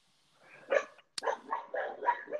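A dog barks in a quick series of five or six sharp yaps, with a rising whine-like bark leading in, and no one talking.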